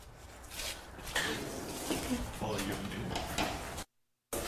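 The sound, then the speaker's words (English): A heavy security double door system at an intercom-controlled entrance operates, one door closing before the other can open, with a few mechanical clunks and a rushing, rumbling slide over steady background noise, followed by a brief moment of silence near the end. “Yeah, so it's a double door system, so that one has to close before this one can open.”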